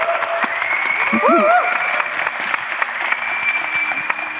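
An audience gives a quick round of applause for the organiser of the evening's event, dense, steady clapping that holds for several seconds, with a short rising vocal whoop briefly cutting through early on.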